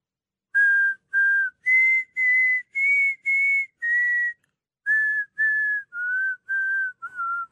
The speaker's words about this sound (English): Listen to what I'm about to whistle and tell me what this is. Ready?